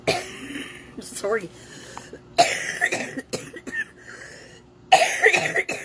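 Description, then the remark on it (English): A person coughs and clears their throat in several loud, harsh bursts, with a brief spoken apology between them. “Sometimes you just cough and get it out.”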